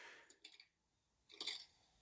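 A sound effect from a sound effect board of someone chewing pork: two short bursts of crisp, crackly crunching separated by a brief pause; bright and brittle, with no talking.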